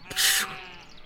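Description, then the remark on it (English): A single short bleat from a shepherd's sheep, fairly loud, lasting under half a second before fading into quiet background. “With my slingshot, I protect my sheep from wolves.”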